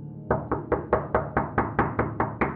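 A steady run of about eleven sharp knocks on the door of a house, evenly spaced, quick and loud, with no voices around them.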